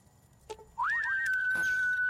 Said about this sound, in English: Oh, whistles as if trying to get someone out of hiding. Okay, that whistle was associated with a closed caption. How odd.